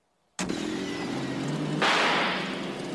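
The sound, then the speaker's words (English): A rusted car, its body eaten through by salt, abruptly starts and runs with a rough, low drone, then a loud hissing rush joins partway through as gas sputters from its leaking exhaust pipe. “Boy, that salt really ate through the car. And the exhaust pipe is leaking.”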